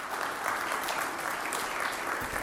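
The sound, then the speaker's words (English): A room full of people at a service claps steadily for the scouts, a dense continuous patter of applause with no voices standing out. “Let's give a round of applause for the scouts.”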